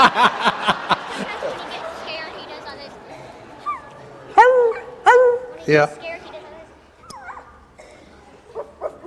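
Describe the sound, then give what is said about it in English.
A person imitates a beagle barking, a few loud, yelping barks and a drawn-out howl-like cry in short bursts, with people talking around them. “Mac barks a lot. Beagles bark. They like to bark.”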